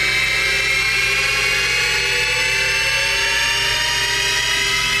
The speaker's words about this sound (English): Now, I love this effect. Rising tones and falling tones overlap. It's like the THX.